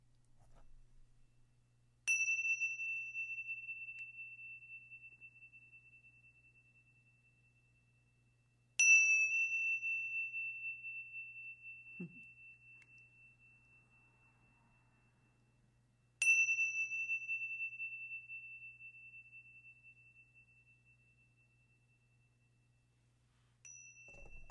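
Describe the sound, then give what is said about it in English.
Three clear metallic strikes of Indian chimes, spaced several seconds apart, each ringing out with a long, slowly fading sustain, plus a soft fourth strike at the very end; no voices. “My beautiful Indian chimes takes me right back to where I bought them.”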